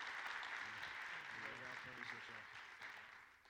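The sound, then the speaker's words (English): A crowd claps steadily to welcome two guests arriving tonight, a dense, sustained wash of applause that fades slightly toward the end, with indistinct voices audible beneath it. “Clap your hands and welcome them as they come here tonight.”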